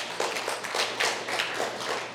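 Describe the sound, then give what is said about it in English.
An audience clapping steadily, a dense, continuous crackle of many hands that holds at an even loudness for the whole couple of seconds, with no voices heard over it. “And please don't clap for me.”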